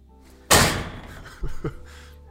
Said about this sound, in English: The door is opened.